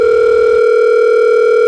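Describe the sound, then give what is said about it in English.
A steady, continuous telephone dial tone of a call to the boss, dialed as 666, hums at a constant pitch. It is loud and unbroken, with a low rumble underneath during the first half second. “I gotta call the boss.”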